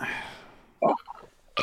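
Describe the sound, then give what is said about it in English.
A short burp bursts out after a fading rumble, followed by a few soft vocal noises and a final abrupt sound at the end. “But I have to burp, man.”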